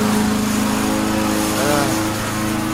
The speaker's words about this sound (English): The starting of a lawnmower.